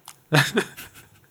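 A hard, forceful sniff through the nose of bourbon whiskey fumes, quickly followed by a second shorter intake and a few fainter breathy puffs trailing off, with no talking.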